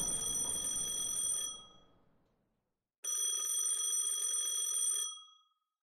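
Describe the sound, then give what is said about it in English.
An old-style telephone bell rings in two long bursts with a pause between, the first trailing off into a fading ring. Bright and metallic, with no voices. “As the elevator dinged, the phone began to ring again.”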